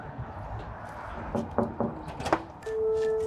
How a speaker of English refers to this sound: All right, so we're gonna go knock on the door now